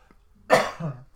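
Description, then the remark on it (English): A single sharp cough bursts out after a moment of quiet, followed by a short lower rasp as it trails off. “Outside of your cough”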